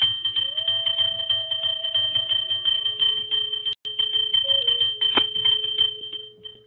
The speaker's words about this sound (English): And then you're going to start going, let me make sure I get your directional points right for you. You're going to start going counterclockwise around the room, and you're going to be ringing the bell.